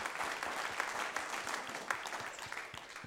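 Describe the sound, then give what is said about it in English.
Light audience applause from a modest number of hands, steady claps at a moderate level for about three seconds, fading slightly at the end, with no voices over it. “I knew there wasn't going to be too many hands clapping.”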